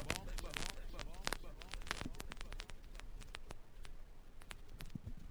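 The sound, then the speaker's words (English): Vinyl record crackle fills the moment: dense, irregular clicks and sharp pops scattered over a steady hiss, fairly loud, with a faint murmur briefly underneath near the start. “Analog special now, vinyls, hit a crackling.”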